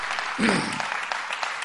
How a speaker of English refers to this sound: Clap your hands to the Lord and give him praise.